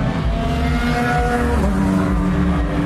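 Loud, continuous roar of racing engines passing by, their whining harmonic pitch shifting as the field of LMP2 and GTE race cars sweeps past one after another, including Johnny Molum in the number 65 Jet Alliance Lotus, the number 58 Ferrari, another Ferrari and some 911s; no voices.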